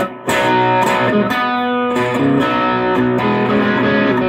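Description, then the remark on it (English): An electric guitar with split single-coil pickups plays bright, slightly overdriven strummed chords, several sharp strums ringing out over about four seconds with no voices. “Single coils as well. You can split them, can't you, by pulling the...”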